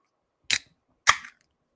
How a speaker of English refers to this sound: Coors Light, open up.